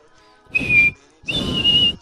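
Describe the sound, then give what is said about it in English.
Two loud, steady whistle blasts, a short one followed by a longer one after a brief pause, each carrying a breathy rush of air beneath the shrill tone. “He sprang to his sleigh, for his team gave a whistle.”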